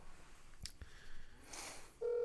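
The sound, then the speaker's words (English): A phone is dialed: two sharp clicks, a brief whooshing swell, then a loud, steady electronic tone that holds to the end. No one speaks. “I'm calling her right now.”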